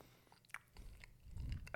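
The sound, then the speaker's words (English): Chewing of a bagel, soft moist bites and crunchy mouth noises repeating irregularly, with a louder crunchy burst at the end and no talking. “just food chewing sounds.”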